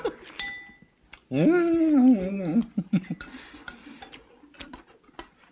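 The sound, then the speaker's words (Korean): A spoon clinks against a bowl several times while someone eats a whole bowl of rice, with light scraping taps and a brief voice sounding in the middle. “밥을 한 그릇 다 먹네.”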